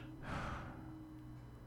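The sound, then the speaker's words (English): A single loud, exaggerated breath, a heavy rasping huff made deliberately by a voice. It fades into a steady low hum with no talking. “Let me see if I can hear you breathing.”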